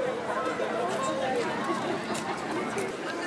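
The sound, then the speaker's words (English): A steady wash of overlapping crowd chatter on Lewisham High Street, many voices blending into a continuous, moderately loud murmur with no single speaker standing out. “The crowd doesn't seem terribly excited yet.”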